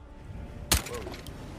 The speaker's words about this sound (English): Open that door.